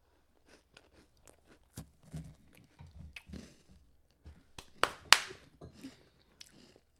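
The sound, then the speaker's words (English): Crunching and chewing of a chocolate wafer candy: a run of crisp, irregular bites and munches, with the loudest sharp crunches coming in a burst near the end. No one speaks. “My main problem is it's way too crunchy.”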